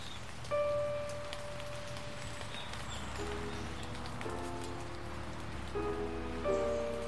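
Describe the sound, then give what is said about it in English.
Steady rain patters continuously on leaves and ground in the woods at Seer Green, a soft even hiss throughout, with faint sustained tones drifting in from far off and no voices. “We're in the woods with I think there was rain.”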